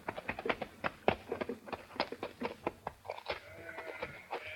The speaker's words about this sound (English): Their coach comes to an abrupt halt near a herd of sheep.